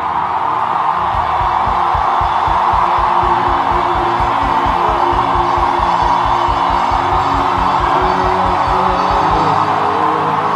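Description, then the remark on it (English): A large crowd shouts and cheers continuously at full volume, a dense roar of many voices over a steady, rhythmic low thumping like stamping or drumming that runs almost the whole way through. “You see, I didn't ask you to stop shouting. Wait till I ask you to stop.”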